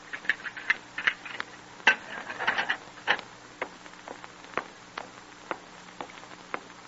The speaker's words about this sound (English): And one night, quite late, Jim hears the clanging of the outer gate and hollow ring of footsteps approaching down the long, stone-flagged corridor leading to his cell.